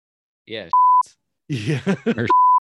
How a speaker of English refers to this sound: Yeah. Whoops, we gotta edit that one. Yeah. Oh, I get to finally use that beep again.